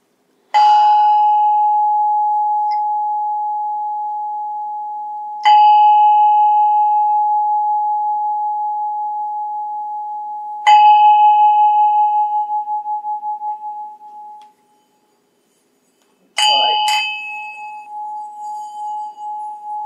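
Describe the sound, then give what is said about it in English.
A single bell is struck four times, each clear ring sustaining a long, slowly fading tone before the next. The final strike comes as a quick double hit. No voices. “We'd like you to ring the bell.”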